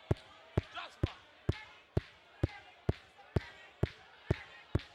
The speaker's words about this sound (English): Everybody clap your hands like this right now. Clap your hands. There we go.